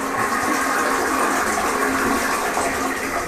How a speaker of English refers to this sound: follows the flush. Always.